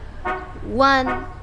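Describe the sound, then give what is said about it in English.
A car horn beeps three times in quick succession, short buzzy honks with the middle one longer and rising slightly in pitch, clear over a low background hum, as a driver arrives to take someone to work. “Hear that car horn beeping?”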